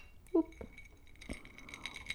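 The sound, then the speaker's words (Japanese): A few light glassy clinks and taps of glasses of shochu raised in a toast, fairly quiet, scattered over about two seconds with faint rattling in between; no one speaks. “じゃあ、とりあえず、乾杯。”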